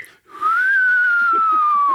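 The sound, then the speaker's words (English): A man whistles an imitation of a bird call: one long, breathy, steady note that rises slightly, then slowly sinks in pitch, held loudly for over a second with air hissing around it. “you are a shitty ventriloquist, dog. You like that doesn't even sound close to a bird.”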